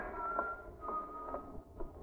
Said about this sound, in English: That whistle. It reminds me of something.